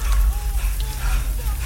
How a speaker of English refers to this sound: I let the rain wash over me. Bits of twigs and leaves fell with the rain.